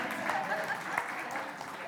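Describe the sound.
A steady round of applause fills the two seconds, a dense wash of many hands clapping at an even loudness, with faint voices cheering underneath.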